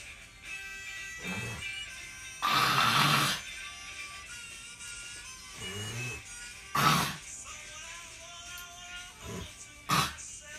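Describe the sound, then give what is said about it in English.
Wet spitting and hawking sounds: one long, harsh, sputtering burst, then a few shorter sharp spits spaced apart, over a faint steady tonal hum. “All I did is spit.”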